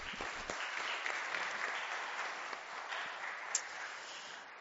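A church audience claps steadily for several seconds to welcome a first-year pastoral student and a youth leader, a dense, even wash of many hands with no talking, holding at a fairly constant level before starting to thin toward the end.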